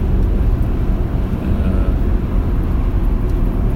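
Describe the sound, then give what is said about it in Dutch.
A steady, low engine and road rumble from inside a moving car driving in Amsterdam to deliver Christmas packages, constant and fairly loud throughout, with no voices or other distinct sounds on top. “We rijden in Amsterdam om wat kerstpakketten weg te brengen.”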